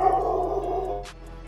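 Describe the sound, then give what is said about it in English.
Dogs bark, a drawn-out, howl-like cry that carries for about a second before a brief sharp burst, with no one talking. “I think the dogs agree.”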